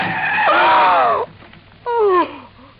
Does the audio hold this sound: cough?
no